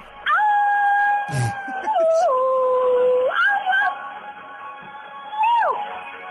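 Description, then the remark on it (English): A person imitates a wolf howl: one long, loud, wavering wail lasting about six seconds, sliding between pitches and gliding down at the end, with faint noise behind. “Moon is still almost full. You better be howling, motherfucker.”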